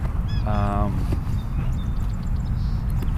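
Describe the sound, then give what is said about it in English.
Outdoor birdsong: an Eastern Meadowlark and a red-winged blackbird calling, with one loud, buzzy, nasal call near the start and a few faint, thin whistles later over steady low rumbling background noise. “And with that, I didn't bring a bird, but with that, we are listening to the Eastern Meadowlark, and it also picked up the red-winged blackbird, and then it picked up a bird that I don't know much about, and that is the Sora.”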